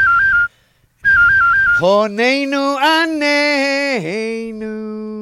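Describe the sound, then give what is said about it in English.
A professional whistler whistles an imitation of a cell phone ringing: two short bursts of a high, warbling trill separated by a brief pause, followed by a long, buzzy, sustained vocal tone that dips in pitch. “You can imitate a cell phone.”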